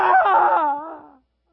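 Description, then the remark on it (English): A single drawn-out shriek of an evil spirit as Jesus commands it to come out of a man, loud and shrill at first, then sliding downward in pitch into a thinner wail that cuts off after about a second. “Come out, you evil spirit." And with a shriek,”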